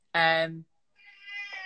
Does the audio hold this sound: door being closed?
no